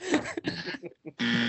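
A harsh, raspy game show buzzer sounds in a few choppy bursts, then cuts back in with a steady, low-pitched, loud drone at the end.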